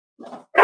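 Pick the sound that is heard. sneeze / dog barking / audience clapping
dog barking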